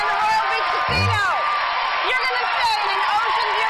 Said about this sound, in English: And the crowd goes wild.